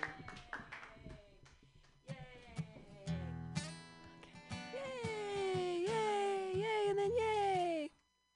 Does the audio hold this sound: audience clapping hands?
yes